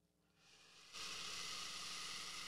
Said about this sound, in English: He's hissing.